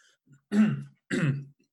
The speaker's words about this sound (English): Sorry, just coughing.